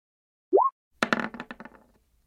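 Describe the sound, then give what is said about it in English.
Dice rolled across a hard surface for one more roll, rolled with advantage: a quick rising plop, then a rattling burst of sharp clicks that bounce, thin out and fade over about a second, with no talking. “Actually, give me one more roll of that.”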